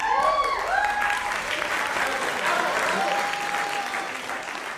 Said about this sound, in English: And then I want you to insert a bunch of applause, like, shh.